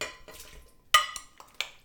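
Chopped tomatoes, onions and peppers are ladled into a blender jar in Portland on a hot day, with a few sharp clinks and knocks of a utensil against the container between softer shuffling and scraping. No talking.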